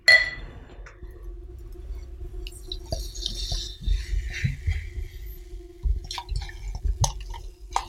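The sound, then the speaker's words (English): Root beer is poured into a glass, with uneven low glugs and a steady fizzing hiss of froth throughout, plus a few clinks; no one speaks. “Some good glugs and some good frothiness on there.”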